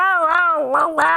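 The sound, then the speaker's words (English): A wavering, howl-like wail, probably a voice imitating coyotes howling in the distance at sunset: one loud, sustained, mid-pitched cry that dips and rises in pitch over about a second, with no other sounds around it. “I'm hearing the coyotes off in the distance.”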